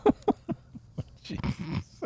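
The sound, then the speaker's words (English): A dog yelps in a quick series of short, sharp cries, then a brief scuffle of rougher, noisier yelping, all fairly loud with no talking. “So kick the dog.”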